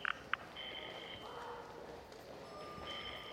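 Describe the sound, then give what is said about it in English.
A courtesy phone being dialed to call a shipping dock: two quick keypad beeps, then a steady high electronic tone that pauses and returns. Quiet, with faint background noise and no one talking. “I'll use the courtesy phone here. Let's see if anybody is still in the shipping dock.”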